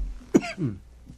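A single sharp cough, followed by a brief raspy, voiced trailing sound, then quiet. No talking.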